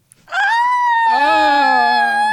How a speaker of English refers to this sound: Good scream. From Dusk Till Dawn brought Tarantino and Robert Rodriguez together for another vampire film.